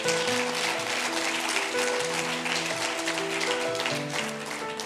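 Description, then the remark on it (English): A church audience claps steadily in a dense, continuous wash of applause as praise after hearing that fundraising proceeds for the Momentum Church Building Fund helped make the building's down payment, with sustained keyboard or organ chords playing underneath for the whole stretch. “You can clap.”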